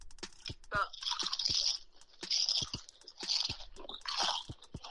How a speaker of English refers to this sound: The best crunch you got. You're going in the best mic. One more crunch. She said she's putting it in her mic. This better be the best crunch.